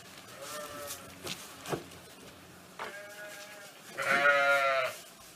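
Sheep bleat repeatedly, a few shorter, fainter calls scattered through the first seconds, then one loud, drawn-out bleat near the end, with no one talking.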